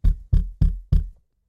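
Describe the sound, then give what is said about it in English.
Four firm knocks on a studio door in an even, steady rhythm, each a deep, solid thud that rings out briefly before the next. No voices, and silence follows the last knock. “Someone is at my studio door.”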